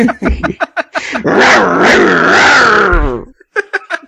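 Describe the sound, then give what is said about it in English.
A harsh, metallic growl with a mechanical, synthesized edge rumbles steadily for about two seconds, loud, framed by brief bursts of talk before and after. “It's like a robot dog.”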